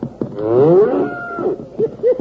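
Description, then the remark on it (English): A little white-faced calf lets out a long, wavering moo, followed by a few shorter, clipped bleats, as it runs with a cutting horse staying with it. The calls are fairly loud, with no talking. “Look at that little white-faced calf go.”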